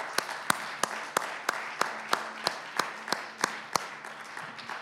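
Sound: audience applauding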